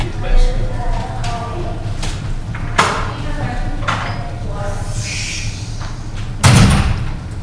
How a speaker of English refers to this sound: I'm just going to close this door.